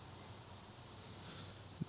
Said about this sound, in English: There's flies. There's bees.